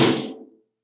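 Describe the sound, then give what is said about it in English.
A heavy door swings open with one dull, rumbling thud that fades within about half a second. It is fairly loud, with no voices. “Open the door!”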